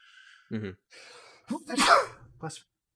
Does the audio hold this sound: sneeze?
yes